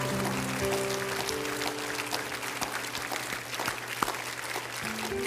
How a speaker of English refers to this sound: Let's clap our hands to the Lord and give him glory.